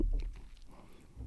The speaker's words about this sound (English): I just gulped right into the mic. Sorry, everyone.